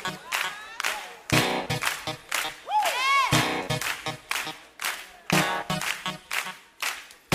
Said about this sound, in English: Clap your hands like this.